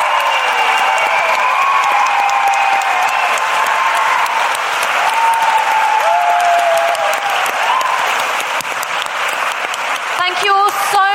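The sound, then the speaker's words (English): Loud, sustained applause from a large audience for the speakers, the Intelligence Squared staff and the venue staff: dense clapping with scattered cheers and whistles rising above it, running steadily for about ten seconds before a new sound cuts in at the end. “Finally, please join me in giving a big round of applause to our speakers, the Intelligence Squared staff, and the venue staff.”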